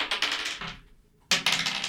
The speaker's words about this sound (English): I take it. Roll. Someone give me a dice. We'll see who grabs it first. Just one? Yeah, we'll roll one.